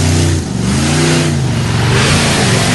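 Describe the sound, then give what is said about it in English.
The engine of the monster truck Bigfoot revs loudly, its deep rumbling pitch climbing and dropping in a few surging pulls with no talking over it. “Bigfoot, thank you for calling in today, and good luck on the toughest Monster Truck Tour this weekend.”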